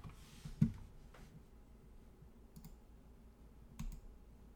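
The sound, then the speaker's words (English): A few quiet, scattered clicks and taps, like a computer keyboard or mouse being pressed, spaced irregularly over low background noise with no talking. “If I click it, is your mouse or your keyboard dead?”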